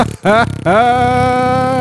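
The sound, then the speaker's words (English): A mouth-made fart noise: a short buzzy burst, a brief gap, then a longer sustained rasp that rises in pitch and holds steady, loud and alone with no talking. “Fart noise. That's gassy.”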